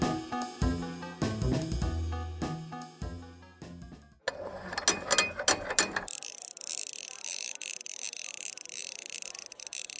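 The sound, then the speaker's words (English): Loud mechanical clattering and ratcheting clicks from a cash register's receipt printer as bubblegum jammed in its register tape is cleared, followed by a steady high whirring buzz as it runs, with no voices. “That's the last of the bubblegum those two little hellions put in here. The printer should work again.”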